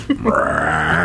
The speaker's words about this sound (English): You know, it's usually not the full-on burps until the end. Sorry about that, everybody.